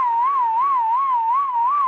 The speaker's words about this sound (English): I'm only able to whistle blowing air in, not out. That's so odd. Interesting. Yeah, which limits the ability to whistle the length of the whistle.